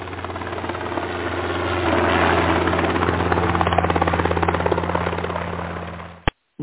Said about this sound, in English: And there, three stories below, lying in the Hedges Inn's fragrant rose garden, is Madagascar's vanilla king in an eternal slumber as helicopters of New York's rich and famous whiz by.